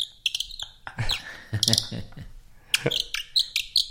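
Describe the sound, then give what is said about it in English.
Bright, high-pitched chirps from a little baby bird come in quick, irregular bursts, moderately loud, with some lower murmuring sounds mixed in between the calls. “I will have a little baby bird with me.”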